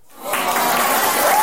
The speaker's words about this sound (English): can I get a round of applause for Manscaped? And we don't have to do the round of applause. I'll fucking do it here with the thing here.